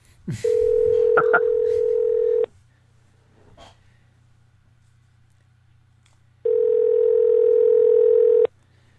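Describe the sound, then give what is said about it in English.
A phone's ringback tone sounds twice while a call is placed to add another person to a phone conversation: a steady, mid-pitched electronic buzz lasting about two seconds, a long pause, then a second identical burst, with a low hum underneath throughout. “He's probably going to see a strange number and not answer.”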